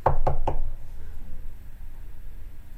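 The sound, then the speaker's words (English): Three quick sharp knocks on a door, evenly spaced within half a second, followed by quiet with a faint low background hum. “let's do the scenario. I'm at the door.”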